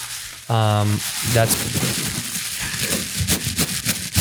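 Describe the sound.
Continuous crinkling of tissue paper as a gift is unwrapped, with irregular crackles and rustles over several seconds, just after a short voiced tone or hum at the start.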